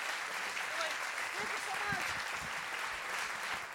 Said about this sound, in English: Keep cheering, because I like cheering when I'm talking. Thank you!